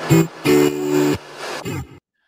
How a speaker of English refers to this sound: Estevez with a shot, way high. That is the final whistle. Charlotte FC earns its first point away from home.